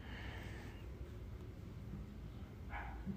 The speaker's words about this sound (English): Here he is barking down there.